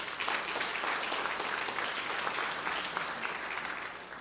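An audience claps their hands in sustained applause, a dense, steady patter of many hands that holds at an even loudness and eases off slightly at the end.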